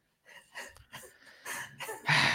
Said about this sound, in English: This is one of the dogs that keeps making so much noise. Her name's Lily. She's a Frenchie. She has breathing problems like Frenchies do. So that's the noise that you're hearing.